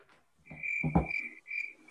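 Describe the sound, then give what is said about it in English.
Crickets chirp in a steady, high-pitched trill that pauses briefly near the end, with a deeper, rougher burst of sound rising underneath in the middle. No one speaks. “The crickets is right.”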